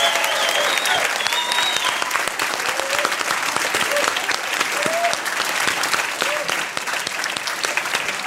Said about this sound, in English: A round of applause again for our panel and for yourselves. Thank you so much.